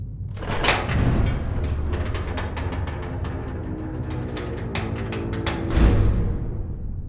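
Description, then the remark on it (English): A heavy, large door slides open with a long, rumbling scrape, rattling and clattering along its track for several seconds before settling with a low thud near the end. “Would you look at this door?”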